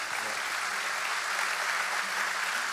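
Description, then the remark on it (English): A crowd claps steadily throughout, a dense, continuous wash of many hands with no pauses, moderately loud and even in level. “Come on, clap for that.”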